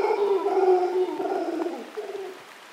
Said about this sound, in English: In the treetops, a troop of golden-mantled howling monkeys calls to each other across the cloud forest. They're fairly large monkeys, 2 to 3 feet long, and mostly black